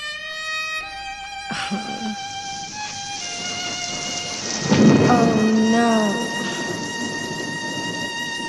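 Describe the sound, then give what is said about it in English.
At the end of a song, steady rain hisses beneath soft, sustained musical chords, and a deep roll of thunder swells up near the middle before fading back into the rainfall as the music lingers. “Rather than the big bombastic ending, we get like this sad, rainy thing.”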